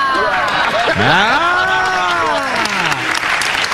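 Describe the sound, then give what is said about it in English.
A crowd claps steadily and densely for the whole stretch as Shaquille O'Neal's name is said, while a loud, drawn-out cheering voice swoops up in pitch, holds, then slowly falls away beneath the applause. “Everyone just claps for Shaq.”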